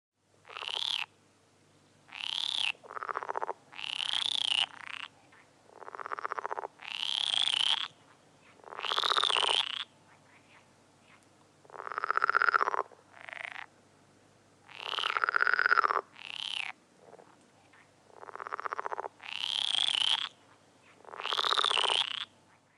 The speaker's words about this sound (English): How about... I'll give you a hint. They lay tadpoles. Frog. Yeah.